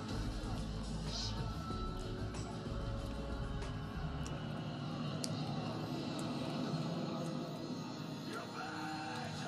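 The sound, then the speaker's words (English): A steady, loud engine drone fills the whole stretch, like an airplane engine running, with a low rumble underneath and faint voices mixed in. “Better jump on that plane, man.”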